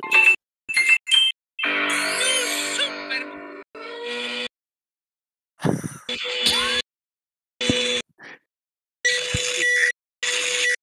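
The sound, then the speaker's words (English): A choppy meme-style edit of microwave beeps played on a phone: loud, bright electronic tones and ringing bursts cut in with voice-like squeals, jumping abruptly between sounds with short gaps of silence. “I pull up the Super What's Microwave a meme? Brothers, on my phone and show it to Rebecca”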